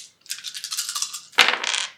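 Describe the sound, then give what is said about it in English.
Several dice, including three stress dice, are rolled in a game: they rattle and clatter for about a second, then land with a sharp knock on a hard surface and skitter briefly before settling, showing two sixes and one stress. Fairly loud, with no voices. “So I've got 3 stress dice.”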